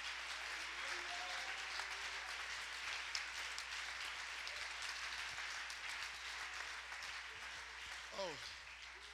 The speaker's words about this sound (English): I wish you would clap your hands.